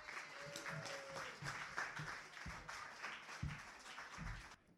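A crowd applauds steadily for several seconds, a dense wash of many hands clapping with a few louder individual claps standing out, before it cuts off abruptly.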